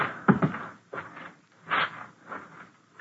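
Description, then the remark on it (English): A house door is eased open and shut quietly, a few soft scraping and creaking bursts with muffled handling sounds, low in volume, with no talking. “Now out the other door, but quietly this time.”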